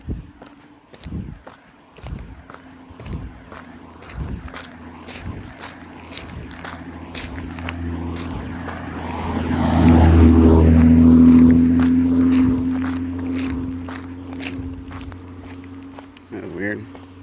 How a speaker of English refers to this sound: I'm hungover with the cars driving by.